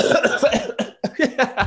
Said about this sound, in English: That sounds like a gnarly cough. No, that was fake. That fake was really good. I could hear the phlegm. There's no phlegm.